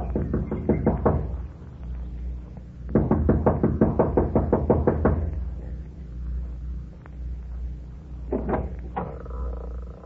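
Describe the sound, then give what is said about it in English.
Rapid, insistent, impatient knocking by a young woman on the front door of a small mountain lodge, in several bursts: a quick run of raps, a longer hurried volley, then a few more knocks after a pause, fairly loud over a low rumble. “runs up the steps of the lodge to the front door. She knocks impatiently, looking about anxiously.”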